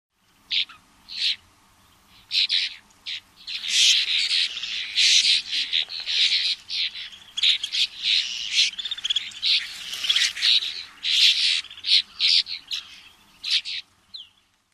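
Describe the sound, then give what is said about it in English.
Snow buntings call repeatedly, giving clear, high, descending whistled chew notes that tumble over one another in quick, overlapping bursts, with brief gaps between flurries and no voices. “Both sexes give a call that is a clear, descending, whistled chew.”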